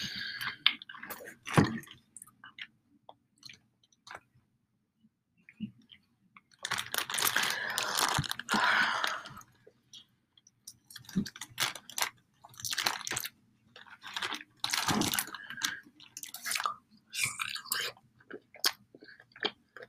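Someone eats food in an ASMR mukbang: wet, sticky chewing and smacking sounds repeat irregularly, with crisp bites and squishy mouth noises, fairly soft overall with short quiet pauses between bursts; no one speaks.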